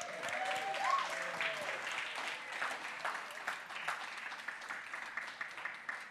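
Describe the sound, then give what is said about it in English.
A crowd of people claps and cheers steadily for several seconds after a prayer, dense applause with a few whoops and a shrill whistle rising early on. “Y'all can cheer. It's okay.”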